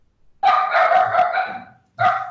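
Three puppies bark excitedly and loudly: a long run of overlapping high yaps, a brief pause, then another burst starting up. No one speaks.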